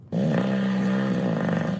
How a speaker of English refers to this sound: My wife told me the other night I might need a CPAP. She says I snore and stop breathing at times.